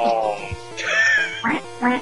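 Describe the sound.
A person's voice mimics a duck, letting out a few nasal, raspy quacks in quick succession over about two seconds, fairly loud.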